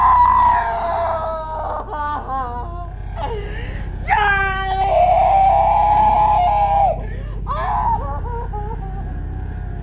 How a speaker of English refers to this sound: It sounds like an animal being tortured. Her screams and like sobbing is horrible to watch.